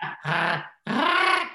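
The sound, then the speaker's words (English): A voice does an impression of Chewbacca's Wookiee growl in two loud, drawn-out vocal bursts separated by a short pause. The strained, rising tone comes out higher and more mewing than a deep roar. “It doesn't sound like Chewbacca. I like it. It's like Chewbacca meets a kitten.”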